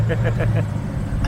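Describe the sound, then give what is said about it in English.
A small 1994 Nissan Sentra with a broken exhaust passes by, its low, rough engine drone loud and steady, with a few quick rhythmic sputters early on. “That's a little 1994 Nissan Sentra with a broken exhaust right there.”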